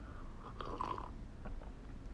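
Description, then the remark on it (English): A wet, drawn-out, loud slurp, like someone sipping a drink, followed by faint mouth and swallowing noises. No one speaks. “And, oh, sorry if I slurped really loud and you guys have, like, really sensitive ears.”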